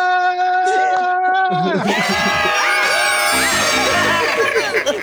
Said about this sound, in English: Screaming, everybody.